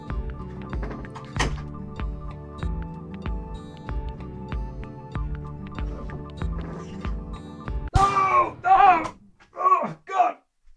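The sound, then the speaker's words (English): A run of dull, repeated knocks from someone at the door in a steady rhythm, followed by a few short voiced sounds near the end. “But, there's someone at the door, hang on.”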